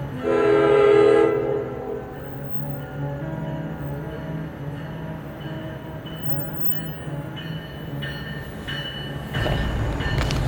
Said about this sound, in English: All right, so Westfield train station, and this was John List's hideout